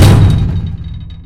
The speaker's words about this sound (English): The door slammed loudly behind them, and the space returned to an inky black.